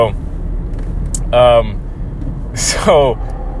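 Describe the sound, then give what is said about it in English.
Badly worn car brakes in need of replacement grind and squeal in two loud, harsh bursts, each lasting about half a second, over a steady low rumble of a vehicle. “And I need new brakes. Yeah, that's my brakes. My brakes are so messed up.”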